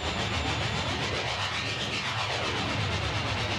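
A train rumbles and roars in a steady, dense wash of noise, with faint tones sweeping up and down through it. The level holds constant throughout, and no voices are heard.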